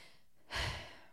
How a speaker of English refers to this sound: I take several sweet, deep breaths from my now unrestricted chest, panting with the effort of the climb.